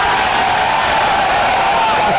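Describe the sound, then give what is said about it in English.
A sustained, loud group yell of celebration by the hosts, who raise their arms and throw their heads back, marking a team becoming bowl eligible; steady and raucous throughout, with voices blending into a continuous cheering roar. “By the way, every time that happens, we raise our arms, throw our heads back, and yell.”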